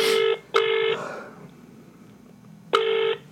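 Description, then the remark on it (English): Short electronic telephone keypad tones sound in quick succession as buttons are pressed: two beeps close together, a pause, then two more, loud, with faint background hiss and no talking. “To place an order, press 1. For customer service, press 2.”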